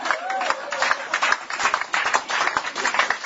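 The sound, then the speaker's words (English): A crowd applauds the speaker's wife steadily for a few seconds, a dense, crackling patter of many hands clapping at once with no pause, with a brief higher vocal whoop near the start. “Clap for my wife.”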